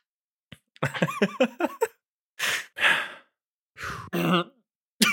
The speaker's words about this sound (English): I just cleared my throat and had hiccups.